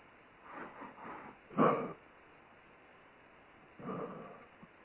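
A dog in a house barks a few times in short, muffled bursts, one sharper bark standing out, then a pause before another bark; the sound is thin and narrow, as if heard over a phone line.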